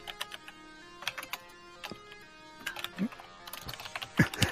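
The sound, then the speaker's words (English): Rapid, irregular clatter of keys on a computer keyboard, bursts of frantic typing with short pauses, moderately loud, with a faint steady hum underneath. “He's like typing. I hear frantic typing.”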